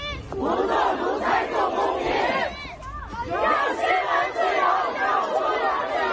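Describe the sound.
A large crowd of protesters in Beijing, China chants loudly and in unison to demand freedom, rhythmic shouted phrases rising and falling, with a brief dip before the voices surge again, dense throughout.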